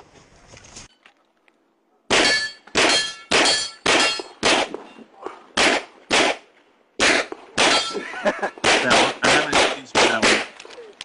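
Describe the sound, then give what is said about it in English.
A fast string of loud rifle shots at a shooting match, fired with a DS9 hybrid, each followed by the bright metallic ring of steel targets being hit, more than a dozen in quick, slightly uneven succession. “Oh, this is my first match with the DS9 hybrid.”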